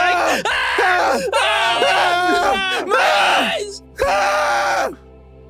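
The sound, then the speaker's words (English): Several voices let out loud, drawn-out screams and groans in four overlapping bursts separated by brief pauses, intense, with a short spoken exclamation mixed in. “I just thought we were screaming.”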